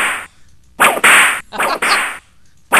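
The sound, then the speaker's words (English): A whip sound effect swishes and cracks several times in quick succession, each lash loud with a sharp hissing snap and brief pauses between, no voices present. “Check out your whip. Oh. We can have whip fights.”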